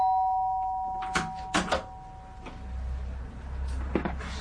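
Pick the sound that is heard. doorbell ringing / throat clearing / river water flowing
doorbell ringing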